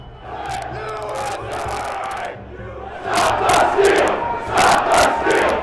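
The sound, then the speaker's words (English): A large crowd of rioters who have broken into the Capitol shouts and roars together, voices overlapping in a dense, reverberant din that swells louder halfway through with repeated surging yells. “By 2:30, rioters breached security and made their way into the Capitol through windows and doors.”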